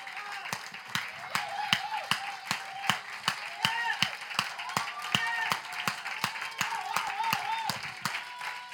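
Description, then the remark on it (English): A church audience claps for Jesus Christ together in a steady, brisk rhythm, sharp beats landing about three per second at a fairly loud level, with voices singing or calling out beneath the clapping. “I said clap for Jesus.”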